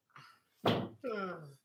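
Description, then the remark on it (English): A door bangs open with a single sharp thud as a child opens it, followed right after by a voice talking. “He opened the door, okay?”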